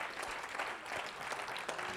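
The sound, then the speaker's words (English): A crowd claps their hands to the Lord during a sermon in a dense, continuous burst of applause, steady and moderately loud, with no one speaking over it. “Clap your hands again to the Lord in Jesus' name.”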